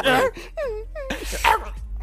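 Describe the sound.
A person imitates a dog, letting out a few sharp yelping barks followed by high, falling whimpers, fairly loud over about two seconds.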